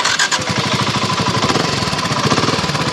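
A motorcycle engine runs loud, its rapid, even putter continuing steadily for the whole stretch with a harsh, rattling edge and no voices.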